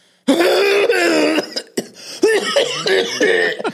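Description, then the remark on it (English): A person's voice imitates the very loud cough-like sounds an animal made while squatting near a tree in the woods: a series of harsh, throaty, strained bursts, loud, with no speech around them. “the animal was squatting near a tree and made sounds to him like a very loud cough.”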